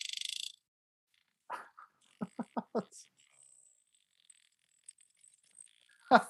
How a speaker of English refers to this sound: Do you know a sperm whale can literally kill you? No, yeah, man. By that clicking sound they make, look.